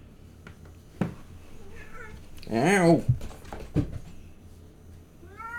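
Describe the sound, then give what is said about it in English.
A cat sitting by the door of a room, tail up, lets out one loud, drawn-out, wavering meow, then a shorter rising meow starts at the end. A person speaks briefly in between, and low background noise runs throughout. “Like, it's a loud-ass cat.”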